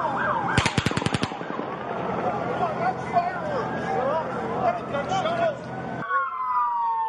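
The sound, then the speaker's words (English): A rapid burst of roughly nine sharp gunshots rings out in quick succession, recorded on police body camera audio, followed by a wailing siren and agitated voices in the background. “You heard someone in there saying, that's fireworks. No, that was gunshots.”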